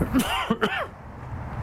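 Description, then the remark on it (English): A person coughs and clears their throat in a couple of quick, rough bursts, fairly loud, followed by a quieter moment of background noise. “Can I ask you, sorry, I'm suddenly coughing, my love.”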